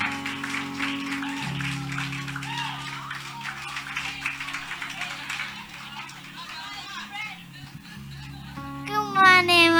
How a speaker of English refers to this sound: Let's clap for her as she comes.